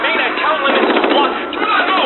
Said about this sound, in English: Several shots are fired, none of which are directed at SCP-096.